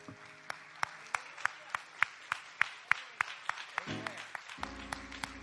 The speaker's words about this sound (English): Amen. Amen. Can we give the Lord another good hand clap of praise?